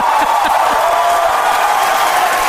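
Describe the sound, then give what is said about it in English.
A large crowd watching a rocket launch cheers loudly as the vehicle goes supersonic, a continuous, dense roar of voices with a few whoops and claps mixed in, holding steady throughout with no clear speech. “You hear the crowd? They like that supersonic.”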